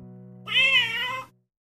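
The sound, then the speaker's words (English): A single drawn-out, fairly loud meow lasting under a second with a wavering pitch; a woman's voice imitating a cat, the sound the Exploding Kittens team promised to play every time the game's box lid is removed, heard alone over faint low hum. “Fun side note to fans of the game, the meow sound is in fact the voice of Elan's wife”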